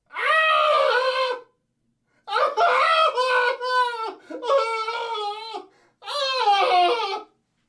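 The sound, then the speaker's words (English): Loud, shrill screams burst from the throat of a chained man walled within masonry in stone catacombs, four long wailing cries, piercing, separated by brief silent gaps, with no talking. “A succession of loud and shrill screams, bursting suddenly from the throat of the chained form, seemed to thrust me violently back.”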